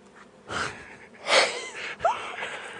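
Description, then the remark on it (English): Breathy, hissy bursts of a sneeze, with sharp inhaled gasps and a few noisy blasts of air spread across a couple of seconds, moderately loud, with no talking. “The sneeze monster is taking over your body.”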